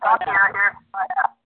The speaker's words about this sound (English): Hey, guys, the leader's phone has a huge echo. Does anyone else hear it?